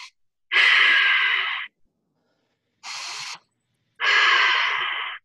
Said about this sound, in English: really simple breathing exercise to do is called ocean breathing. You breathe in through your nose, out through your nose.